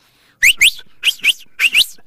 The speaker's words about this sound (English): You can whistle with your lip. You can whistle with two fingers. You can whistle with one finger. I can do it too well.